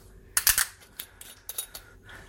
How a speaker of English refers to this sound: One of these days I should buy wine with an actual cork in it so it doesn't make the most ugly sound in the world when I open it up.